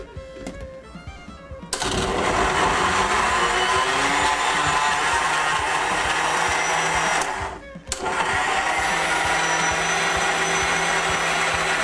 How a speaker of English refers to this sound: And you have to have liquid. Put a little onion in, and pepper, and your salt, and an egg. The egg will give it the liquid to start. I'm ready to start the blender. Put the cover on.